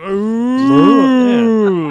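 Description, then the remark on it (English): A person imitates a cow with one long, loud, drawn-out moo lasting about two seconds. The voice wavers in pitch near the middle and is heard alone, without speech. “It's like, I don't speak cow, and I don't know what you mean.”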